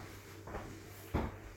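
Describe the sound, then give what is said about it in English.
An Alexa smart speaker being unplugged to turn it off: two short, dull clunks about half a second apart, the second louder, heard over a faint steady hum, with no talking. “Let me turn that off before you frighten me again. That was my Alexa app, if anyone's wondering.”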